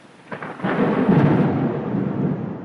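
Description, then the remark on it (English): A deep rumble of thunder on a stormy night swells after a brief crackle and rolls on heavily for a couple of seconds, loud, with a faint hiss of rain beneath and no voices. “find counsel and advice at this time on a stormy night”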